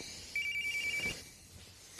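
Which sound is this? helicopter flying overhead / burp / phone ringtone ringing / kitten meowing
phone ringtone ringing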